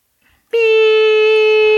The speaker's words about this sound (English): Beep. She's flatlining through the phone.